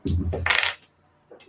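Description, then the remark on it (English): Two dice clatter and tumble across a hard tabletop in a quick burst of bright rattling clicks, settling within a second on a 2 and a 1, followed by a faint final tap. “2 and a 1. So no sixes.”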